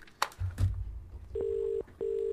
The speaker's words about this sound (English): And I'm just wondering whether we should do something like pick up the phone and maybe get on the phone to them and give them a call. So do you fancy dialing a number?